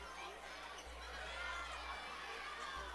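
West County basketball fans cheer as the second free throw goes, a steady, dense roar of many voices that holds at an even level for about three seconds, with no single voice standing out.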